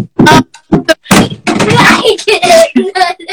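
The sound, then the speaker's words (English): A mannequin foot thrown down a staircase tumbles, making a loud series of irregular thuds and knocks as it bounces from step to step. “What you can't see is he just threw a mannequin foot down the stairs.”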